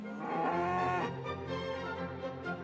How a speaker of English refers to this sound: Now, his main business is growing organic vegetables, but he still has a small livestock holding. But 15 cows and 15 calves and the bull.